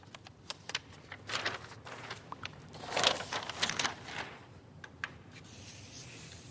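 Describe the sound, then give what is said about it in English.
Five or six sheets of paper crumpled up: a dense run of crisp crackles and rustles that swells in the middle, then thins to a few scattered crinkles, with no voices. “Then if I take 5 or 6 sheets of paper and crumple them up and put them on top of my fist, that's called the neocortex.”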